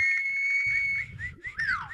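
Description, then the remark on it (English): A shrill whistle is blown in one long steady blast, then breaks into a few shorter warbling toots that sweep downward at the end, loud, with low rumbling noise beneath. “We got a whistle.”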